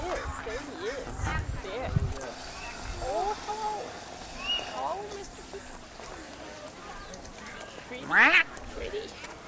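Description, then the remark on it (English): A single loud, piercing peacock call rings out near the end, brief, over a murmur of outdoor background noise and faint voices. “What's up, peacock?”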